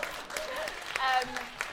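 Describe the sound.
A light smattering of audience applause, a handful of scattered claps over a couple of seconds at moderate volume, with faint murmuring voices mixed in underneath.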